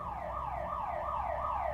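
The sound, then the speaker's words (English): A home alarm going off around 1 a.m.: a steady electronic wail that sweeps up and down in pitch about twice a second, loud and continuous, with no voices over it. “But then that Monday before he went missing, the alarm went off.”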